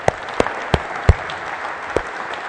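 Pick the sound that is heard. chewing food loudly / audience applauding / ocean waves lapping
audience applauding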